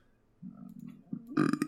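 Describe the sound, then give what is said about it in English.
A single loud burp that starts as a low rumble and swells into a louder, rougher belch near its end, with no talking over it. “I just burped.”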